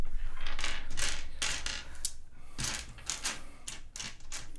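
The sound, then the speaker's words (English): Dice, rolled for a dexterity saving throw, rattle and clatter across a hard tabletop, a series of sharp, bright clicks in irregular bursts that keep tumbling for several seconds, with no one speaking. “Hot dice.”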